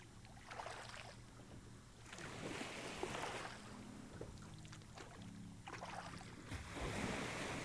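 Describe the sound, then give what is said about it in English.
Gentle shallow waves wash and hiss onto the sandy beach of a small island's lagoon in repeated surges, with soft water sloshing and a low rumble beneath, fairly steady, no voices. “Your boat surfs the curve of the shallow wave, which deposits you on the sandy beach.”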